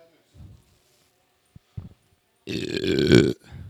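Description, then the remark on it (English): A loud, drawn-out burp rumbles for nearly a second, preceded by a few short murmurs and clicks, with a brief vocal sound trailing after it. “I'm starting the burps early today.”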